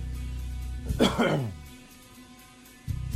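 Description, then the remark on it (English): A single sharp cough bursts out loudly and fades within half a second, with a voice heard briefly before and after it. “Now, see if you got the video, subscribe to the video portion, you could have seen me cough.”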